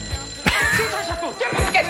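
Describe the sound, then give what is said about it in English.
A bell-type telephone rings in short, bright bursts, sounding once near the start and again near the end, over a busy background with faint voices. “And then he almost knocks down an old man when the phone does ring.”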